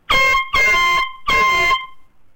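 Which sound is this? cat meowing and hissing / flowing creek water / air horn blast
air horn blast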